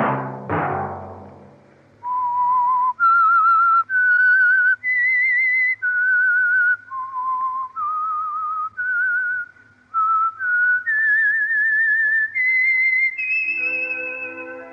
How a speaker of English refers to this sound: Let that whistle be your signal for the Signal Oil program, The Whistler, each Sunday night at this same time.